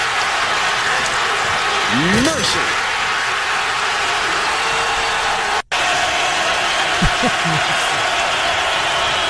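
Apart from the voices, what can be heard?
basketball arena crowd roaring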